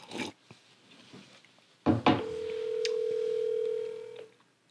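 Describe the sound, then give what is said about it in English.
Two short clattering knocks, then a single steady electronic phone tone holds for about two seconds at a mid pitch before cutting off. No one speaks. “Okay, he's probably trying to answer from his watch.”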